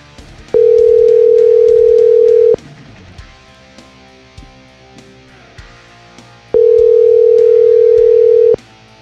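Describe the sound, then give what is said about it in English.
A phone ringback tone sounds twice as a call to a man goes unanswered, each steady two-second tone followed by a pause, loud over faint background noise. “There's no way he's gonna get on the phone here. That's too many rings.”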